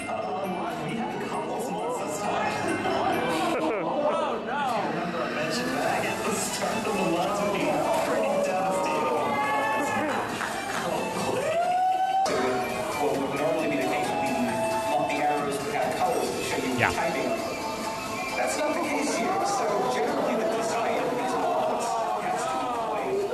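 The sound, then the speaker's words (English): An excited crowd at a gaming event reacts to the modifications during a remote run, with many overlapping voices shouting and cheering in a dense, steady roar that stays loud for the whole stretch, briefly dipping midway. “So this is how the crowd reacted to the modifications.”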